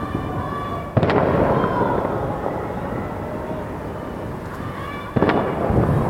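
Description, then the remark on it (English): Two sharp fireworks bursts, about four seconds apart, crack over a dense, steady roar of rumbling noise that stays loud throughout, with faint crowd voices mixed in, heard from hotel windows in a city as chanting begins from surrounding apartment buildings, echoing off the buildings. “as the fireworks started exploding, we're leaning out the windows of our hotel to listen”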